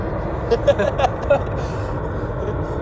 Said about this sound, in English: We got a plane going overhead. It's a mail plane. It's a mail plane.